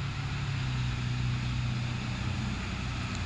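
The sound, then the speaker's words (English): A loud motorbike passing by drones steadily for a few seconds, a low throbbing rumble with a humming buzz over it, holding an even volume throughout with no voices. “Fucking loud ass bike shit.”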